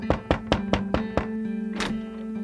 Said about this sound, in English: They knocked on Dawes' front door.